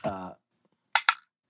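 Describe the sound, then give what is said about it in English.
A short vocal sound, then a pause, followed by two quick, sharp clacks of a ten-sided die (D10) hitting a hard surface and settling, landing on an 8. “So the last thing we need for you to do, sir, is roll a D10.”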